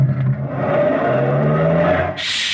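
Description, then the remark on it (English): A truck engine revs loudly, its droning pitch climbing steadily as it accelerates to pin a man against a door with its bumper, then a sudden harsh, high-pitched grinding noise cuts in right at the end. “Just hold him there and cut your motor.”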